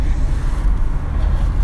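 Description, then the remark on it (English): A big truck rumbles past, a loud, steady low engine drone with road noise that fills the short moment with no voices. “Just big truck. A lot of big trucks here.”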